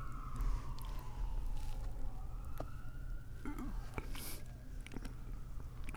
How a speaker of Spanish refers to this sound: Donde hay mucho, sucede muchas cosas, mucha patrulla, mucha sirena.